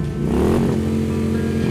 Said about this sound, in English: You all are gunning it south, heading towards Rex's gate in Rex's car